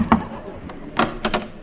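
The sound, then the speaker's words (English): Several sharp wooden knocks by Fred Allen on the door of a typical American home with Ginger Rogers on the mailbox, spaced unevenly with a quick pair near the end, sounding alone over a faint background hiss. “Well, knock on the door, Fred.”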